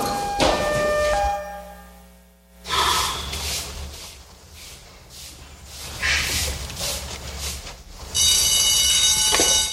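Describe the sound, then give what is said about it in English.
A loud, steady electronic alarm rings with a piercing tone, briefly at first and then again near the end, with heavy breathing and gasps in the quieter stretch between. “No, the alarm.”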